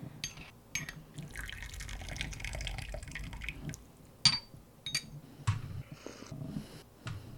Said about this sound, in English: I just pour out the first infusion, and I'm just smelling the surface smell on the from the hot, warm tea broth.